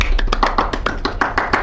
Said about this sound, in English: I'm sure everyone's finding that really hard, and can we just give a round of applause to the head teachers?